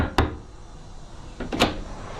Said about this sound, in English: You don't have to knock that hard.